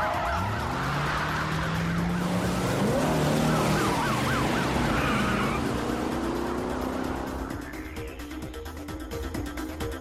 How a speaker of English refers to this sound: We then see a CG cutscene and a car leaves the police station at high speed and starts to drive towards Central Park.